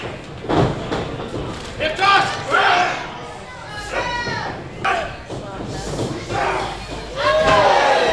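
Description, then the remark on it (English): A heavy body impact thuds as wrestler Pat Powers hits Preston Maxwell with a big clothesline, knocking him over the top rope out into the crowd, amid a loud, roaring arena crowd that shouts and cheers in swelling waves, with a few sharp slams punctuating the steady din. “Big clothesline by Powers, knocking Preston over the top rope out into the crowd.”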